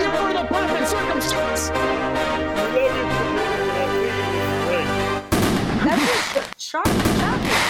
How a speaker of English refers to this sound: So I'm going to give myself some fireworks.